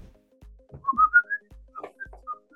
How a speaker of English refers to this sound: How come it picks up your whistling? I whistle at normal frequencies, not like supersonic dog whistles.